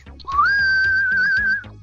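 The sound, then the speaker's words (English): A person whistles a halfway Halloween whistle: one long note that slides upward, then holds steady with a slight wavering quaver for over a second before cutting off, clear over a low background rumble. “That was your halfway Halloween whistle?”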